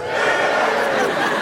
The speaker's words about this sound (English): Give us a cheer if you don't know what you're at.